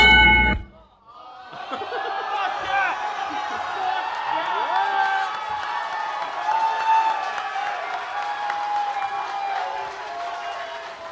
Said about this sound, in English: Why are you cheering him? That's all he hears in his head all the time anyway.